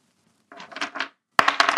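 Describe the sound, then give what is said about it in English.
A twenty-sided die clatters and tumbles across a hard surface in two separate rolls by two players in a tabletop role-playing game, coming up 12 and 8. The second roll starts with a sharp crack and a quick run of bright rattling bounces. “Please roll me a 20-sider for both of you.”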